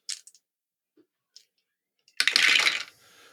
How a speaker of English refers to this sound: Which is, hold on, let me roll these dice here. 5d8. Give me a second.